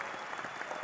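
A crowd applauds and cheers, a dense, steady wash of clapping that holds a constant loudness through the short moment with no voices standing out.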